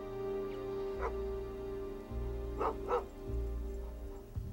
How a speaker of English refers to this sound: That is Clovis, the dog.